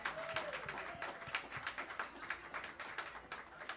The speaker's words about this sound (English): But first, please, a healthy round of applause for our great drummer